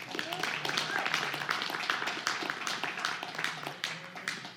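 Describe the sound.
A crowd claps steadily in a dense round of applause, with a murmur of voices and cheering underneath, holding at an even level for several seconds.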